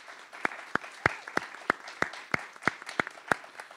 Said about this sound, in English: So can we all give a nice, encouraging round of applause to these fine gentlemen here today with us?